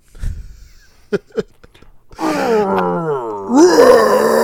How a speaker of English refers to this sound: Hulk picks up another vat and slams it down, and Blonsky goes flying as Hulk heads for the jungle. He pauses only to give a victory roar.